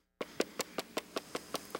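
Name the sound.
knocking on wood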